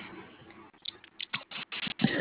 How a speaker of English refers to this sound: I just shuffled the cards again.